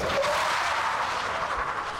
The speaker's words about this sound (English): truck came speeding down the dirt road and screeched to a stop in front of the shop.